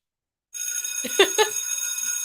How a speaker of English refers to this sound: Get our bell ready.